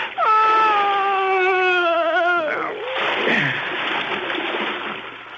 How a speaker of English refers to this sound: He slumped over his wife's body. I closed my ears to her moans.